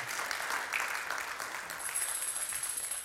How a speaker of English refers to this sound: I take the applause as for her because she had the hard work, so she deserves the applause.